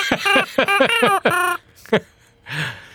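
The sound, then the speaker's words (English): A rubber chicken toy squawks in a rapid series of shrill, harmonic honks, then a lone squeak and a final breathy wheeze as the air runs out, loud. “How can you squeeze those notes out of it?”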